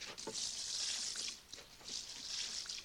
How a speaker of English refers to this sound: Now we add enough liquid to cover.